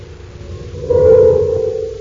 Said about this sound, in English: Blasting off without further opposition, Buzz and Happy accelerate under rocket power, watching Tiranna 7 grow smaller in their rearview scope.